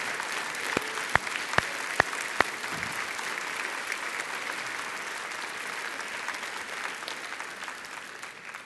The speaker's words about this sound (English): Would you stand? Give the Lord an extra special clap offering. And let's get ready here. Come on, you got to do better than that.